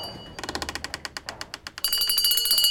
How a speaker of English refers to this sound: He felt like he had scarcely begun when suddenly he heard a bell chime outside.